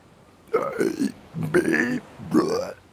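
Three drawn-out, pitched burps in quick succession, loud, each wavering in tone as a person tries to burp a song; no talking, just brief pauses between them.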